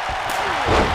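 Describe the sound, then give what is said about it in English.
A dull body slam thuds onto a wrestling mat about two-thirds of the way through as a wrestler is knocked down by a clothesline, half buried under the steady roar of a large arena crowd. “I don't think he got everything with that clothesline, but enough to knock Sami down.”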